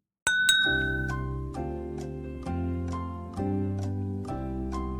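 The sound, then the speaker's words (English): Two quick, bright clinks of glasses of rum in a toast at the start, followed by a steady run of resonant, chiming chords that ring out one after another with no talking. “Let's get into it. Cheers.”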